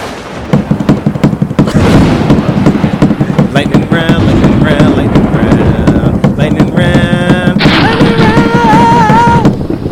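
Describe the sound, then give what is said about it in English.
Loud, rapid banging on a table, a dense run of sharp thuds nearly nonstop for about ten seconds, with raised voices and shouting mixed in over the pounding. “Break the table. It's my fucking table.”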